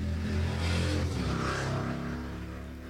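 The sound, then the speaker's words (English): A motorcycle engine revs loudly outside, its low growl rising and holding steady before easing off slightly over a few seconds, with no voices over it. “Goddamn motorcycle.”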